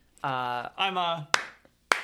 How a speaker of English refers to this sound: I'm clapping. Great speech!